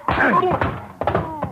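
A solid punch to the jaw lands with a dull thwack, followed by a second blow about a second later, with strained grunting voices between the hits, fairly loud.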